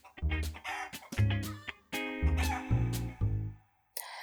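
A hen clucks loudly, a rapid run of short, throaty squawks in an uneven rhythm for about four seconds, followed by a brief burst of noise.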